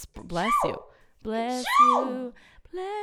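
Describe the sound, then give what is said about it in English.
Two loud, voiced sneezes in quick succession, each a sharp breathy burst that swoops up and drops in pitch, followed by a short third vocal sound. “Bless you. Ooh, my gosh.”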